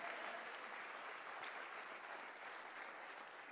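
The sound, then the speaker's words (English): A church audience claps steadily, many hands blending into a dense, even wash of applause that holds at a constant level without a break or swell. “And now this church is going to clap their hands because I've just saved a family counseling session.”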